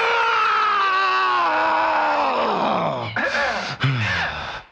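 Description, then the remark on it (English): Two people let out a long, loud, joyful scream together, celebrating being debt-free, their voices sliding downward in pitch over several seconds, with a brief catch of breath before fading out. “Can I get a debt-free scream?”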